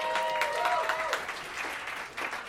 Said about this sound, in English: Clap your hands